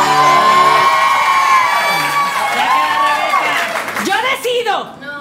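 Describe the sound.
A loud crowd cheers and shouts for about five seconds, with high excited whoops rising over a dense wash of voices before it starts to thin out at the end.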